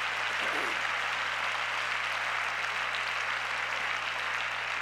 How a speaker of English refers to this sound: Thank God for the Bible. Everybody clap your hands again. Amen.